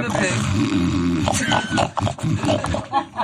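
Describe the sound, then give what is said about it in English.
A person imitates a hungry pig, making loud, continuous guttural grunts and snorting growls for a few seconds, with a raspy, rumbling texture throughout. “It's a fucking hungry ass pig right there.”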